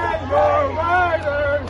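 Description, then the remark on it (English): A large crowd at a Boston University commencement chants "Pay your writers" and boos Warner Brothers Discovery president David Zaslav, a commencement speaker, many voices merging into a loud, sustained, wavering roar with a steady low hum underneath, lasting under two seconds. “Some in the crowd chanted, "Pay your writers," and booed Warner Brothers Discovery president David Zaslav, one of the commencement speakers, in a show of support for striking Hollywood writers.”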